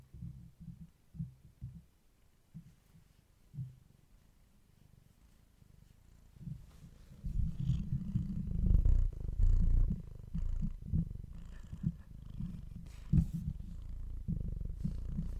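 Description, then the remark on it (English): A cat purring, a low steady rumbling that starts soft and intermittent, then grows fuller and louder after several seconds, continuing without any talking. “Cat ASMR section.”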